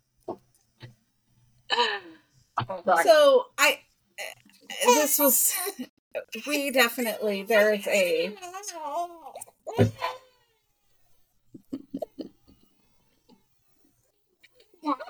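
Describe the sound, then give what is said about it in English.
Young children fuss and cry in loud, wavering wails for several seconds, then settle into a few scattered whimpers and quieter sounds. “Let me tell you, all of our kids were quiet as and then as soon as we pressed record, they decided that they didn't want us doing this.”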